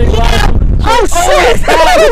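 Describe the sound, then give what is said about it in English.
Strong wind outdoors roars and buffets the microphone in a steady low rumble, with a person's voice rising and falling over it in loud, drawn-out shouts. “It's very windy out here.”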